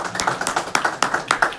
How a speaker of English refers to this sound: So thank you. A big round of applause for the year's work. Thank you.